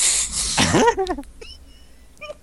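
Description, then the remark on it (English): Someone blows their nose: a loud, breathy burst of rushing air lasting under a second, ending in a brief nasal honk, followed by a few faint sniffs and small noises. “Well, the bad news is I can't blow my nose and hit the cough button at the same time.”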